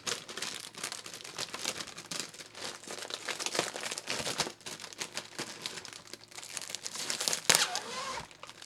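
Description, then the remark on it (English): Continuous crinkling and crackling of a plastic package of Oreo cookies being opened, with irregular rustles and a few sharper crunches, steady for several seconds with no talking. “Now we've got to do is get into those cookies.”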